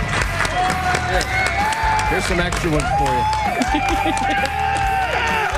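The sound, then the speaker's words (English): A crowd of people who travelled to attend a live morning show claps and cheers steadily with scattered whoops, a dense roar of applause continuing under a man talking over it. “If you made the trip for the half-assed morning show, give yourselves a round of applause.”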